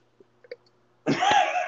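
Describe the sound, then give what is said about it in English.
A loud, raspy belch bursts out after a few faint clicks and lasts about half a second, rough, with no talking around it. “And that was a belch.”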